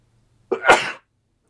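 A single sneeze bursts out abruptly with a sharp intake and a loud, breathy release lasting about half a second, then silence.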